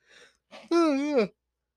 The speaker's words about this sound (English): Apologize, second yawn of the show.